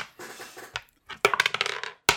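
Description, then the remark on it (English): Dice clatter across a hard surface during a tabletop role-playing game session: a few scattered clicks, then a quick burst of rapid rattling taps, ending in one sharp clack. No one speaks. “All right, dice and questions?”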